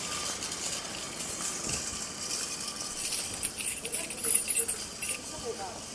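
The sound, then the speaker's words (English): Keys jingle and clink in a steady metallic rattle, followed near the end by a few louder, sharper clunks as a car trunk pops open. “I heard keys jingling, then the sound of the trunk popping open.”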